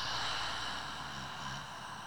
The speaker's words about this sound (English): So first breath, taking a deep breath in through our nostrils. pulling up to the crown of your head, breathing in your enoughness, and exhaling it out.